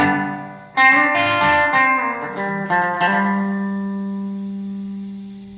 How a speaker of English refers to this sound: So it's got all kinds of reverbs built into it. It's like a multi-effects reverb. Sounds cool. Sounds pretty neat.